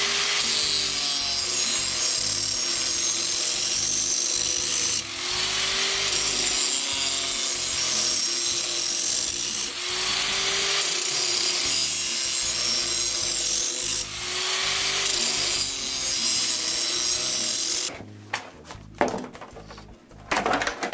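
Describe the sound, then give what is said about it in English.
A lawn mower blade being sharpened at its existing angle, throwing sparks: a loud, harsh, continuous grinding hiss that swells and dips in long passes every few seconds, then stops, followed by a few clanks and knocks. “So we want to maintain the same angle that is on here and just make it sharper.”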